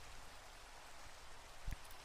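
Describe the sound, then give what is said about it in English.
Steady, intensifying autumn rain falls in a gorge beside a creek, hissing across a broad band of noise, with a brief low thump near the end. No voices, just the continuous wash of falling water. “Meanwhile, the rain intensified, adding wet autumn chill to the gorge's naturally chilly air and the creek's spring mist.”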